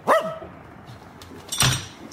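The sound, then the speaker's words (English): A dog gives two barks: a short, sharp yelp at the start, then after a pause a louder, rougher bark, with a quiet background and no voices. “Good doggy, yes.”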